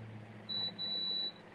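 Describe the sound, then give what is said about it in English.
Two high-pitched electronic beeps from a call participant's background, a short one followed by a longer steady tone, sound clearly over a low background hum with no one talking. “What is that beeping?”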